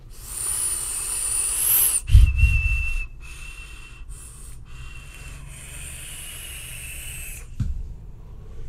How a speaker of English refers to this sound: You hear that? Whistle?